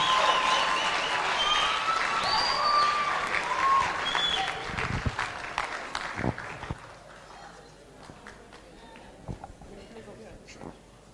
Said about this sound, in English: So let's clap our hands and receive her. Keep clapping till she comes. Bindura.